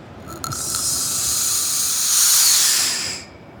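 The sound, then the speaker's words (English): A steady, high-pitched hiss of air rushing into an evacuated glass vacuum flask shaped like a glass balloon as it is carefully opened to take an air sample, swelling slightly louder before cutting off after about three seconds, with a couple of faint clicks at the start. “And when Ralph carefully opens the vessel, air gets sucked in.”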